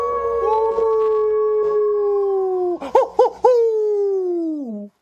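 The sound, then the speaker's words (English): Wolves howl together in long, sustained, overlapping tones that waver briefly in the middle before sliding down in pitch to a close. Loud, with no talking. “The pack of Red Wolves, they're gathering right now.”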